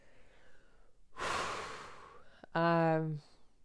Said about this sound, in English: Yeah, so again, breathing.